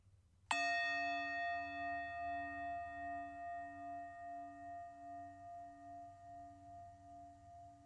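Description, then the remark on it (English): A single meditation bell is struck once, ringing out clearly with a long, shimmering sustain that slowly fades and pulses gently over several seconds, with no talking. “And another bell.”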